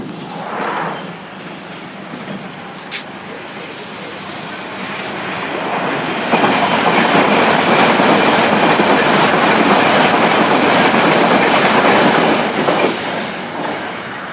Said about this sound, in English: One of the reasons that you can hear so many trains, apart from the actual frequency of the service, is that we've also got the Metropolitan line on the outside, the fast lines.